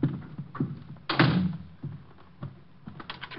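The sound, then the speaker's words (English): A door shuts with a solid thump, preceded and followed by several small mechanical clicks and knocks as a man works the latch and locks the door. “I'm locking the door.”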